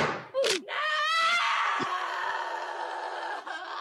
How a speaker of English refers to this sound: Yeah, that's sheer pain, that, isn't it? Well, it's the bang, and then the scream. Yeah, the bang is the knee goes fucked, and then the hip rips, like all the ligaments and everything just rip there, and then the scream.